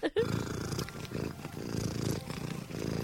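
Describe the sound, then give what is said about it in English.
A cat purrs loudly and steadily, the rumbling vibration pulsing in a slow rhythm of breaths for a few seconds with no talking over it. “she forced my hand and made me play a purr.”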